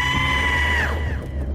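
A woman's sustained, high-pitched scream, loud and strained, holding steady for most of a second before dropping off and fading into a low rumbling background.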